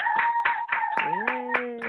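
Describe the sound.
Steady, rhythmic clapping at about four claps a second, loud and continuous, with a voice calling out over it and sliding in pitch partway through.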